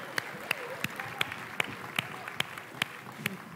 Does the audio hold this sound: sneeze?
no